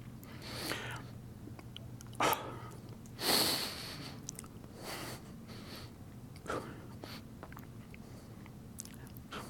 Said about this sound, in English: First sip of water, excuse me.